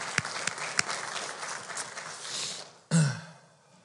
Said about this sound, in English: So yeah, can we give our pastors a hand clap? We appreciate them. We love them.